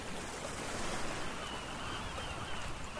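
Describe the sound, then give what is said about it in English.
A steady, broad wash of ocean waves rolling onto a sunny beach, a continuous surf roar with gentle swells in loudness and no voices. “It is so nice and sunny today at the beach. The sand is bright, the water is glistening.”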